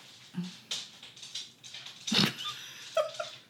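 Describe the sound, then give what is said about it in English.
A female dog named Trixie moving about in another room, the faint scattered taps and scuffles of her nails clacking on a hardwood floor muffled, with one louder scrabble midway and a brief high whine near the end. “And the worst part is she didn't even come in here. Nope, she just wanted to make sure she joined her audio.”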